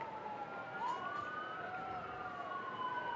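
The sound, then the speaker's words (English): Emergency vehicle sirens wail outside a stadium during a football game between OU and the Red Raiders, several overlapping tones rising and falling steadily over a constant wash of crowd-like background noise, with no clear talking. “Those sirens are outside the stadium.”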